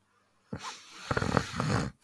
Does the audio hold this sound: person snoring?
yes